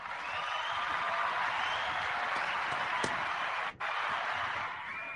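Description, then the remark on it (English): A round of applause welcoming NFL guest Mike Tannenbaum: dense, steady clapping that holds at an even level for about five seconds, with a brief dip near the end and no voices over it. “Round of applause, right?”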